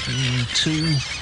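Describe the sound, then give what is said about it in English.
Two drawn-out, wavering seagull-like cries, apparently a human voice imitating gulls in a comedy sketch about 1,000 seagulls in a hotel room at the Fairmont, sound fairly loud over a constant hissy, crowded background. “And then it progressed to six seagulls, then 100, then there was 1,000 seagulls in the room as the sketch progressed.”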